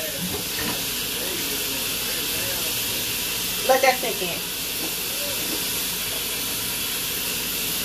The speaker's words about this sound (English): I'm washing dishes real quick so y'all can let that sink in.